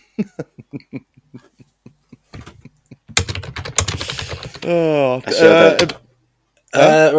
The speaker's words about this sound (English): What you typing in there, bud?